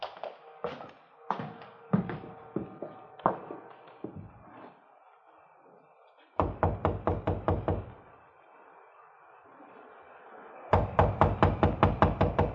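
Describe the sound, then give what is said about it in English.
Loud knocking on a front door in the dark: a few scattered heavy raps, then two rapid insistent bursts of about eight knocks each, separated by a short quiet pause. No one speaks. “Well, let's try the door.”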